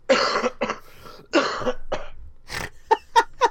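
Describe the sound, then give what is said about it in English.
A string of harsh coughs: two heavy hacking bursts, then a wheezy breath and three short, sharp coughs in quick succession. No talking. “you forgot your cough switch there, sir.”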